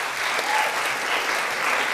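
An audience gives one last big round of applause, a dense, even wash of many hands clapping that holds at a fairly loud level throughout, with no voices standing out.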